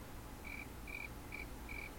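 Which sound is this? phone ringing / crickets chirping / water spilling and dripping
crickets chirping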